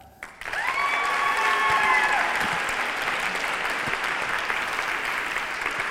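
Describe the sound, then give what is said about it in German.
An audience breaks into steady applause welcoming the evening's four poetry slam performers, starting abruptly and holding at an even, dense level of clapping, with a few cheers and whistles rising over it early on. “Deshalb begrüßt mit mir mit einem, sagen wir mal, 7-Punkte-Applaus unsere 4 Slammer des heutigen Abends.”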